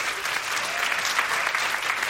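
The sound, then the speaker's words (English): A live audience claps steadily in answer to a quick survey question about online dating, a dense wash of many hands at moderate loudness with no break, heard on its own without any talking. “People here who've been online dating, can you applaud women, especially if you've been dating online?”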